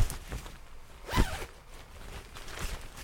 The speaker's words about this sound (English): Are you going to zip me up first? Oh, you got to zip you up, right. That's going to fucking help. Zip.